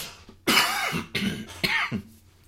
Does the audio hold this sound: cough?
yes